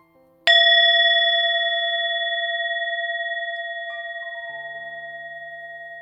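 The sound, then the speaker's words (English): A single strike on a singing bowl at the start, sounded to soothe body and mind as eyes close for rest, then a long, steady ringing tone with several pure overtones that slowly fades but sustains to the end, with no voices. “And so, let us listen to the sound of the bowl now and allow the sound of this bowl to soothe our body and ease our mind as we gently close down our eyes slowly and comfortably, giving yourself full permission to rest and recover.”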